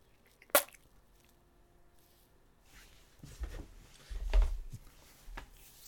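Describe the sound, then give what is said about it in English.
A voice imitates spitting chewing tobacco into a cistern: one sharp, wet burst, then a few softer, low, squishy splats later on. “A pair of old-timers, a man and a woman, are sitting on the front porch, working through some old chewing tobacco and spitting into a cistern.”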